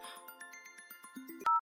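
A mobile phone ringtone plays a bright, repeating electronic melody with steady pulsing notes, then cuts off abruptly with a loud click and a short beep. No one speaks.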